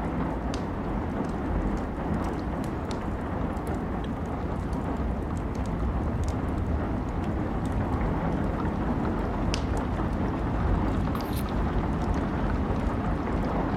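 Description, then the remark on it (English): Steady, dense rain drums on a roof, a constant hiss with scattered sharper drop taps poking through, no voices, continuing evenly throughout. “If you listen closely, you can hear the rain hitting the roof.”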